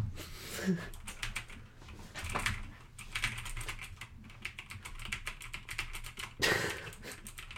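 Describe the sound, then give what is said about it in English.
Rapid, continuous clatter of computer keyboard keys and mouse clicks during gameplay, fairly loud, in dense irregular bursts with a faint murmur of voices in the background. “Watch you just on the keyboard and mouse.”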